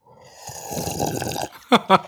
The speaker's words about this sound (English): What do they call that? I forget the term. ASMR. Yes. It'll just be an hour recording of me sipping water.